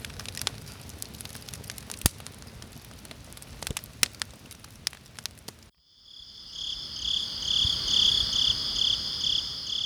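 Crackling and popping from a fire give way after a brief hush to a loud, steady chorus of crickets chirping later in the evening at night, in dense, pulsing trills, continuous to the end.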